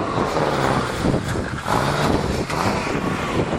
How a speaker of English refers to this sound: Might be getting a little bit of wind. Definitely hearing car noise.